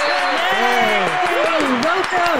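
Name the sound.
applause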